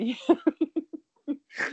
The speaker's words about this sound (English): You just snort. Yeah, I snort.